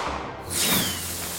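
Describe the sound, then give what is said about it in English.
A pistol fires acid at a ghoul with a sudden, loud hissing spray that swells in and streaks on as a steady sizzling whoosh for about a second, with no sharp bang and no voices. “So you fire off this pistol, and this acid just, like, streaks out towards the ghoul.”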